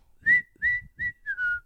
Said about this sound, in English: That was so good. I like whistling. Yes, what a good whistle.